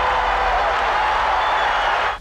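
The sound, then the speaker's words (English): A loud, sustained roar of hockey fans cheering after Bob Nystrom's overtime goal wins the Stanley Cup for the Islanders, a dense wash of voices and noise that holds steady for about two seconds before cutting off abruptly. “Listen to the fans.”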